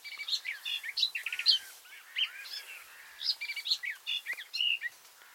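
A songbird sings a rapid, varied medley of chirps, whistles and buzzy trills, mixing in imitations of other species' calls, in bursts over about five seconds with no talking.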